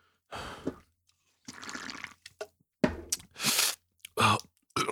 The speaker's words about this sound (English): Well, maybe you want to take a sip of this gin and tonic first so that you actually have the courage to say something to Genghis Khan so you don't get scared like you always do. Okay, here.